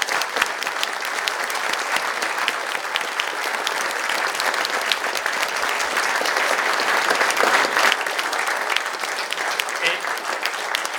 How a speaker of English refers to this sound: Thank you both for being here this evening. Ladies and gentlemen, big round of applause. Thank you very much indeed.